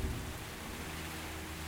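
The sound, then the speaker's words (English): Steady, even rainfall hisses without pause, with the low, muffled rumble of a thunderstorm underneath. No one speaks. “guided sleep meditation with background storm and rai”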